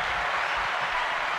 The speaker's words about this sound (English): Good stuff. Good stuff. Hand claps on that.